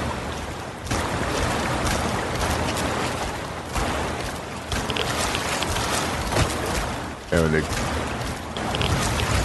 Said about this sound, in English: To escape the Tepid Sewers, you have to actually splash out in the river a little bit, take a little bit of rads.